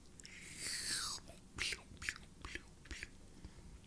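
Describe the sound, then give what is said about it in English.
A quiet slurping sip of hot coffee lasting about half a second, followed by several short, soft mouth and swallowing sounds, with no talking. “I need a sip of coffee.”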